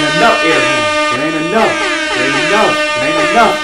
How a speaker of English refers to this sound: We did it. Light up them air horns. You already know. There ain't enough air horns.